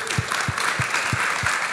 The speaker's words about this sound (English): Can we just give them a round of applause as they come?